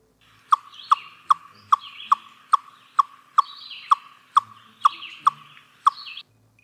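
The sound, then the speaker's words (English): A chipmunk gives its chucking alarm call, used against an aerial predator while standing still: a steady run of sharp, clipped chuck notes, about eleven in quick regular rhythm, over a softer chattering background of higher twittering calls. “They have an alarm call called chucking, and they use this if there is an aerial predator, and they do this while they're standing still.”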